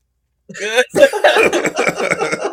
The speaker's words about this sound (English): You get me laughing, I get to cough and quit.